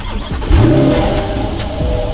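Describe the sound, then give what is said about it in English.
The engine of a 2021 C8 sports car cranks and fires at about half a second, roaring up in a loud rising rev before settling into a deep, rumbling idle. No one speaks. “Let's give this thing a start.”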